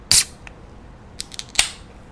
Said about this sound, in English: That nice can opening sound.